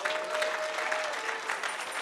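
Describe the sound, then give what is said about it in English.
A crowd applauds steadily to appreciate Jesus, dense clapping filling the whole stretch at an even, moderately loud level with no voices standing out. “And let's truly appreciate Jesus for the opportunity.”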